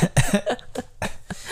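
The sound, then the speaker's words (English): A man who is a little sick coughs in the distance, trying to hide it: a series of muffled, stifled coughs, about five short bursts in quick irregular succession, with no talking over them. “If you hear him coughing in the distance, it's because he's trying to hide it as best as he can so that you don't have to hear it in your ears.”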